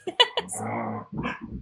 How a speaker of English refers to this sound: Sorry, my dogs in the background are causing a ruckus.